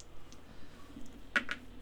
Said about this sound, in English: All right, so we just rolled a fucking triangle dice.